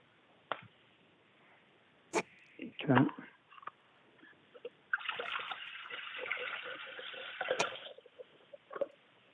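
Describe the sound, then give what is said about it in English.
Vinegar is poured into a container to clean it out, filling it up in a steady, splashing stream lasting a few seconds, preceded by a few sharp clunks and handling knocks, heard over a narrow, phone-like line. “He's pouring vinegar.”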